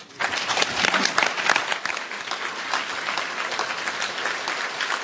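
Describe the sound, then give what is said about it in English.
Sustained applause from a large crowd, a standing ovation for a former scout sniper's testimony at the Rules of Engagement panel of Winter Soldier 2008, dense and steady clapping that swells early and holds at a strong level for several seconds. “who's receiving a standing ovation from the crowd.”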